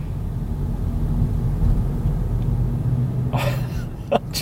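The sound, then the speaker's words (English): Steady low road and engine rumble fills the inside of a moving car, droning evenly throughout, with a couple of brief brighter bursts near the end. “I'm in a car yelling about how Bacon Deluxe burgers aren't as good as they used to be.”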